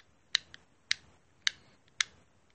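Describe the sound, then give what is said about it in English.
Four sharp plastic clicks from a fidget cube, spaced about half a second apart in a steady rhythm, fairly quiet, with a faint softer click after the first. “I'm clicking my fidget cube.”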